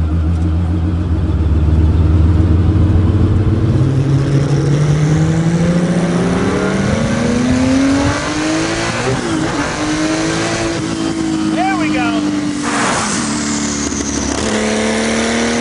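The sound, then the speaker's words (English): A Tesla Roadster electric sports car accelerates hard, its pitch climbing steadily before dipping and rising again through shifts. The drive is loud, with no talking. “We can cleanse your palate by hearing what that car sounds like.”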